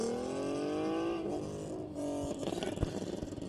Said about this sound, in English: Q50 red sport. Yeah. Making all the raspy noises on that one.